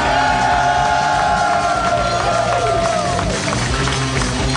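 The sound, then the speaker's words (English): A loud, packed audience at a live show cheers continuously as the host is welcomed onto the stage, a dense roar of voices with high whoops and shouts gliding above it, plus scattered clapping, sustained at full strength the whole time. “And a weird thing happened there because I heard cheering and I was preoccupied and we're relaxed now.”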